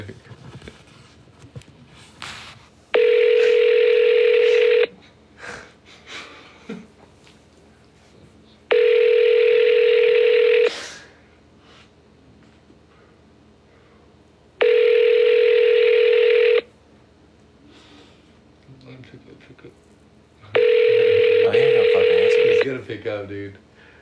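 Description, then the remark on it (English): A phone ringback tone repeats four times as a call is placed again, each loud, steady buzzing burst lasting about two seconds with long pauses between, while people talk quietly in the gaps. “Okay, call again.”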